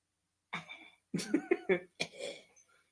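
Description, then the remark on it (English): A person fakes a cough: a string of about five or six exaggerated, voiced coughs in quick bursts, with short pauses between them and no talking. “Well, I hear the coughing one all the time. Yes, you can keep making that face. No. Do the coughing one.”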